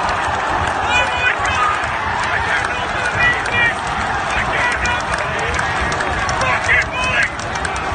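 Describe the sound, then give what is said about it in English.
A football crowd erupts in sustained screaming and roaring at the third goal, a loud, dense wall of voices that stays intense throughout with bursts of shouting rising above the mass. “I'm going to play a bit of audio into the podcast now, actually, which is me screaming on the third goal, the reaction to the goal.”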